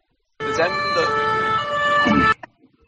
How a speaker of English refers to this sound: And the sirens are going off already, even louder for the next World Cup cycle.